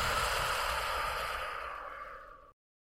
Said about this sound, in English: So watch it move as you deepen your breathing for a few rounds. Deep inhale. Deep exhale.